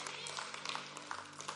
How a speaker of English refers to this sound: So bless you, give yourselves a hand clap, amen.